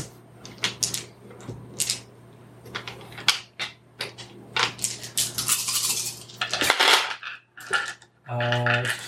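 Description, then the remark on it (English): A handful of ten dice rattle and clatter as they are rolled, with bursts of sharp clicks and tumbling over several seconds, then a brief steady tone at the very end. “I need you to roll 10 dice again.”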